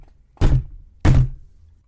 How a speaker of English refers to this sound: This time, I saw the door jolt with each thud, and I felt like I had jumped into the ceiling, though my feet hadn't left the ground. I pressed against the wall harder, like that would protect me, shield me from the source of the thuds.